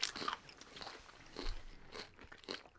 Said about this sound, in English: So if anybody in our listening audience is one of those people that has that, whatever that aversion is to hearing people chew, do you have that?